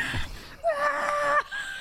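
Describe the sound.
A person imitates a screech with their voice, producing a strained, high-pitched squeal that holds for about a second after a short breathy lead-in, fairly loud.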